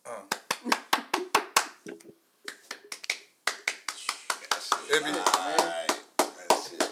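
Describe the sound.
Sharp, uneven hand claps ring out one after another in a loose, irregular rhythm, about twenty in all, with a voice murmuring briefly beneath them partway through.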